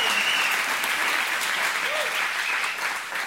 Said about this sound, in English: I really think if that was your cancer gone, you'd be clapping louder. Let's try it one more time. I'm telling you, I'm putting you in remedial clap class.